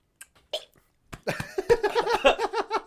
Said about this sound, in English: That made me burp. Oh, but I was trying to swallow.